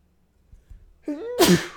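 A single human sneeze: a rising breathy inhale building into a sharp, loud burst, after a couple of soft thumps.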